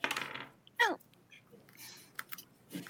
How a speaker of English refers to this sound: Well, of course there's going to be a dice roll just to see how successful this long rest is going to be.